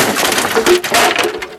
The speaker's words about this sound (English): She fell through the floorboards with a horrible scream and a crash.